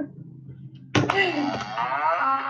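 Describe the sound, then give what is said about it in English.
A cow moos loudly, one long drawn-out call that starts abruptly after a moment of low background hum and carries on steadily to the end. “I'm going to do the cow.”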